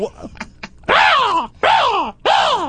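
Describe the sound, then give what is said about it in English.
A person imitates a crow with three loud, harsh, drawn-out caws in a steady rhythm, each a raspy arching cry, preceded by a few short breathy warm-up sounds. “That's a crow.”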